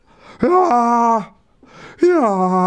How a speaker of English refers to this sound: I think it didn't help that I'm not very good at fake yawns. Listen.